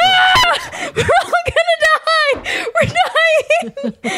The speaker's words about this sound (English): You have got to stop screaming into the microphone.